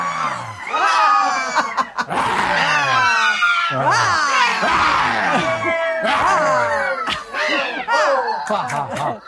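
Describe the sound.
Several people roar like lions at once during a lion laughter exercise, voices imitating the animal in loud, overlapping, rising and falling growls that keep going without a break, mixed with shrill yells.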